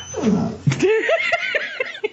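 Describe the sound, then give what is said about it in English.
A female dog yawns: a drawn-out, squeaky whine that breaks into several short, high, whimpering squeaks trailing off, with no one talking. “You may have just heard her yawn, but.”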